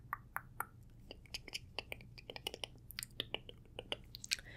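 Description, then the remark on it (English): Quiet, crackly brushing of loose little hairs off someone's skin after they have been wiped dry: a quick, irregular series of soft bristly ticks and swishes over a low steady hum, with no one talking. “Now that you're dry, I'm just gonna brush.”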